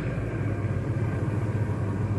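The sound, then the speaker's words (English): A truck engine rumbles steadily as the truck stops, a deep, even drone with no voices over it. “Oh, stop the truck. I'm going to capture him.”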